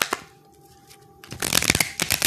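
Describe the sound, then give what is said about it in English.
A deck of Love and Lust oracle cards being shuffled: a few soft riffles at first, then a quick, dense burst of crisp papery flapping and snapping that fills the second half. “Now let me go ahead and do my Lover's Oracle cards here.”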